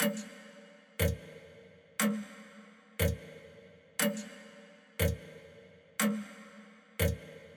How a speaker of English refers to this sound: like a clock, like tick, tick, tick. And the ticking goes faster and faster to show the passage of time.